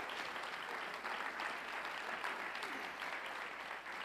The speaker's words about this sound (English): Come on, somebody clap your hands unto the Lord.